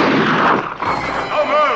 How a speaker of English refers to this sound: And just as we're talking about this and joking about it, a gunshot.